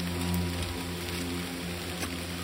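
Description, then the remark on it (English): Steady, dense rain pours down in a constant wash of hiss, with a low droning hum underneath and no voices, keeping an even loudness throughout. “A confused look crossed the man's face, rain pouring off his chin.”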